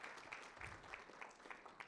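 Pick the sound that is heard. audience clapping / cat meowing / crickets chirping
audience clapping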